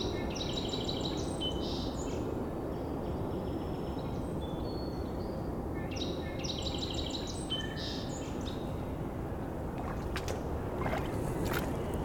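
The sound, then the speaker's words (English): A red-bellied woodpecker calls in short repeated rolling bursts, heard twice over a steady wash of water and low ambient rumble, with no one speaking. “Red-belly woodpecker.”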